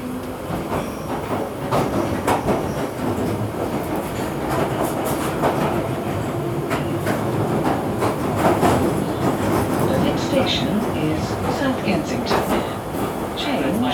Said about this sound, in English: Mind the gap between the train and the platform. This is Knightsbridge. This is a Piccadilly line service to Northfield.